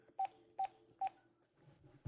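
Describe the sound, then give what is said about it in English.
Three short, evenly spaced beeps of telephone keypad dialing tones as someone dials a phone to call a guest, clear, followed by a faint low rumble and a brief thump at the end. “Should I dial the phone?”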